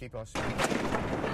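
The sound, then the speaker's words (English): A brief voice gives way to a sudden, loud burst of crunching, grinding metal as cars and trucks slide out of control and collide on an icy highway in a 50-vehicle pileup in Iowa amid snow, ice and rain, a harsh noisy clatter that stays intense for about a second. “The sickening sound of crunching metal as cars and trucks slip and slide out of control on an icy highway.”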